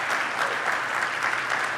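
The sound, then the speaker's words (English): A church audience claps for Jesus for five seconds during a service. It is a dense, continuous wash of many hands with no individual claps standing out, holding a constant loud level throughout. “Can we clap for Jesus 5 seconds in the room?”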